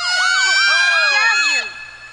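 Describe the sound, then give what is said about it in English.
A loud electronic alarm wails with fast, repeated rising and falling pitch sweeps for about a second and a half, then cuts off abruptly, leaving a faint low hum. “I'm sorry, that alarm always goes off right before sex.”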